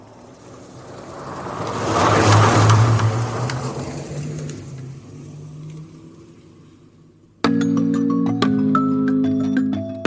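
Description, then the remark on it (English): A car engine rumbles closer, swelling to a loud roar before easing off, and then music abruptly cuts in for the final few seconds. “The car's getting closer towards you.”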